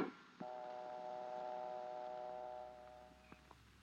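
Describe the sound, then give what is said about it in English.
A steady telephone dial tone hums continuously for a few seconds, a flat layered tone, then fades out, followed by a couple of faint clicks. “Always listen for the dial tone.”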